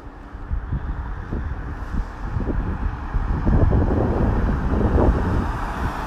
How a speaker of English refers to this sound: That's just the odd car.